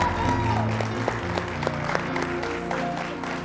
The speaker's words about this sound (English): Amen. I appreciate you guys. Can we give Miss Julie another hand clap, please?